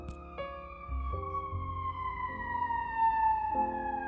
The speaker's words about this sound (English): I hope you can hear them. You probably can't, but that's okay. There are sirens going on, and it's like, yes, they come get you there,